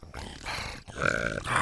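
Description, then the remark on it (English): A human voice makes a rough, raspy snarl using the soft palate, in two sustained bursts, the second brighter and more tonal, with a brief breath gap between them; gritty, growling texture at moderate loudness. “So yeah, so it really the soft palate and can be used to effect some really cool snarling effects.”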